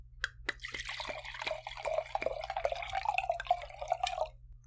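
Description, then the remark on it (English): Medium-dry white wine from France pours steadily into a glass for about four seconds, a gurgling splash whose pitch rises slightly as the glass fills, with a few drips at the start and no talking. “Okay, let's pour this.”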